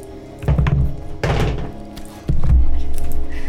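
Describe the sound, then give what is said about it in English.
Dice, thrown as a straight roll during a game, tumble onto a table in a few loud, hollow thunks, each followed by a short clatter as they settle, with a final heavier knock and low rumble near the end. “Give Mal a straight roll.”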